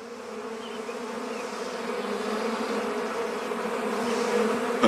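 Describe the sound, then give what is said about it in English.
A swarm of bees drones steadily and densely throughout, a continuous layered buzz that stays fairly loud, swelling slightly toward the end with no voices present. “Hey, get off my sugar! Bad bees!”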